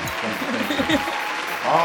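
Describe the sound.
A live audience in Syracuse claps steadily for a couple of seconds, a dense crackling patter mixed with scattered voices and a brief shout near the end.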